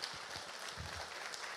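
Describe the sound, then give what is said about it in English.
A crowd applauds steadily for people who work with children, teachers and coaches, a dense wash of many hands clapping at once that holds at an even level throughout, with no voices rising above it. “if you are a teacher or a coach or something like that, will you stand for just a second and let us applaud you for investing in the next generation?”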